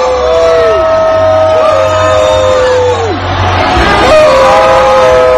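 A dense rally crowd in Tampa yells and shouts at reporter Jim Acosta in loud, overlapping voices, with rising and falling cries cutting through a steady roar of many people.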